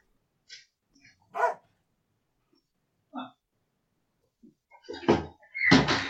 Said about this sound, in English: Actually, speaking of 5 seconds, let me just go and shut my front door because I think Ziggy is hiding.